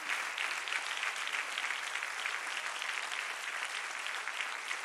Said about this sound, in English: Would you give them a hand clap of appreciation? Huge moment. Huge, huge moment.